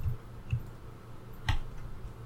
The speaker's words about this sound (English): you're just going to do a straight fortune roll with two dice, I believe.